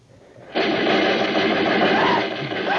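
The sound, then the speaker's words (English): Rifle gunfire erupts abruptly after a quiet half-second, becoming a loud, dense, continuous burst of rapid shots that carries on for over two seconds without pause, as rifles are fired at five Japanese snipers near the mouth of a river in the bush. “And as we shot, 10,000 parrots and macaws started screaming in fright at the sudden outburst.”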